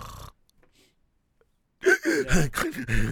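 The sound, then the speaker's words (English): A man imitates his own gasping, labored breathing during sleep, making a loud, strained series of breathy, voiced gasps after a short pause of near silence. “They were telling me that I was breathing, just going.”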